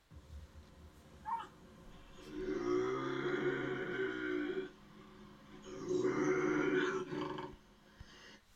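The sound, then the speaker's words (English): A bobcat growls and grumbles in two long, rough bursts, each lasting a couple of seconds with a harsh, throaty texture, fairly loud with no talking. “That fucking growling, grumbling, whatever you want to call it.”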